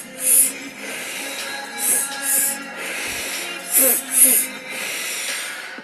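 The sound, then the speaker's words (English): Breathing through the mouth in a guided breathing exercise, filling belly then chest: two quick, airy inhales followed by a longer sighing exhale, cycling several times over a soft, steady tonal background. “We're going to change the breathing just a little bit by doing two inhales in and a big sigh out. It's going to be all with your mouth.”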